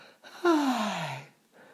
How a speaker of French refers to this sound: Boucle d'or s'étira en bâillant.